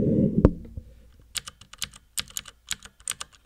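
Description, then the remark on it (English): Rapid, crisp clicks of typing on a mechanical keyboard, fairly loud, in an uneven burst of keystrokes after a brief thump at the start. No one speaks. “this one has like a really satisfying click for kind of typing”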